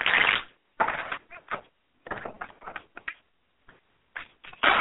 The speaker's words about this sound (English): So let me give the cards a quick shuffle and see what comes out for our love journey. Okay.